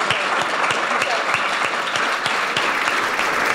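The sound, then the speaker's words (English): Steady audience applause for Tommy Palmer, co-founder of Resolution Games, after his talk opening Guru Live 2016, fills the whole stretch, a dense crackle of many hands clapping at a constant loudness with no voices breaking through. “But can we have a big round of applause for Tommy Palmer?”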